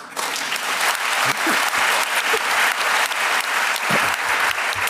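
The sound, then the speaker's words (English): An audience claps steadily for about five seconds to welcome author John Humphreys a second time, a dense, loud wash of many hands with no break, and no voices stand out above it. “That second bit of applause doesn't come out of my allotted time, does it?”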